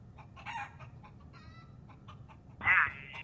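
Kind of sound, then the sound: animal, chickens clucking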